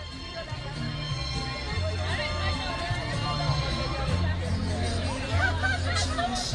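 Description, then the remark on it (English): A steady outdoor crowd hubbub of many overlapping voices chattering at Fiestival, a Mexican Independence Day celebration in Bowling Green on a humid Saturday, with music playing underneath, its low sustained tones holding beneath the constant murmur throughout. “The sounds of music and smells of freshly cooked food wafted through the air on a humid Saturday in Bowling Green.”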